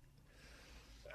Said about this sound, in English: I sneeze on the air.